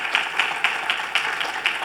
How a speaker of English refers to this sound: I need you to clap for this. We're celebrating 26 baptisms so far this year.